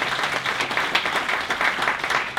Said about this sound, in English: Will you give yourselves a round of applause for coming out on a stormy morning?